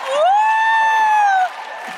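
audience clapping and cheering

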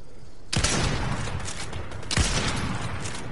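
video game gunfire

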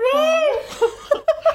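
cat meowing

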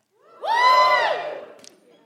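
audience cheering

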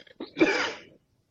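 cough

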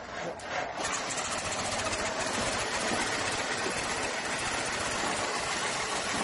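old car engine running

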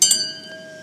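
glasses clinking

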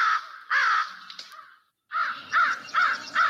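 american crow cawing

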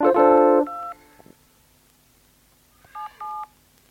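telephone dialing tones

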